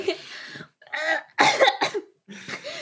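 coughing

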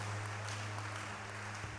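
hand claps

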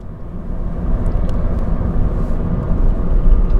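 car engine

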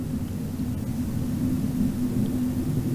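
airplane flying overhead

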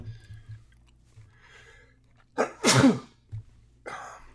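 human sneeze

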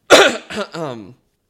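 cough

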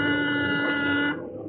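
doorbell ringing

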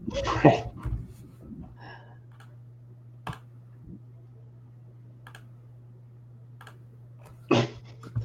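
repeated computer mouse clicking

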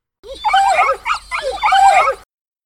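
dogs barking and whimpering

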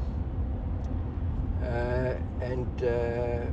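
car interior noise

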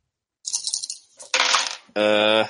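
dice being rolled

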